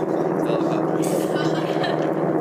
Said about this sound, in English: I'll just wait until the plane passes over.